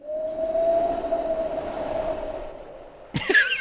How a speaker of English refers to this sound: There you go, some ominous whooshing for you.